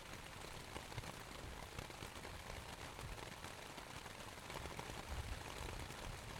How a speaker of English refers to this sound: It bounces off the top and slides down the sides, only to land in the mud with a slight plop. You listen to the rain for a long, long time. Who knows how long? It could be minutes, or it could be hours.